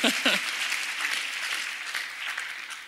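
Steady applause from a crowd fills the whole clip, a dense, bright wash of many hands clapping at an even loudness, with a brief voice or cheer at the very start.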